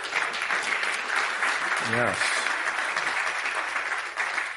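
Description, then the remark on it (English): An audience at a morning church service claps steadily to the Lord in thanks for a guest's work, a dense wash of many hands that stays loud and even throughout, with a single voice calling out briefly in the middle. “So give a clap to the Lord for her work.”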